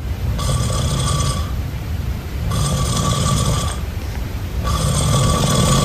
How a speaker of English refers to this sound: I've never snored in my life, and that is what she got from me sleeping, and that's why she went downstairs. Does it sound like his snores are pretty rapid? They're like... I was hearing like a drill, like a...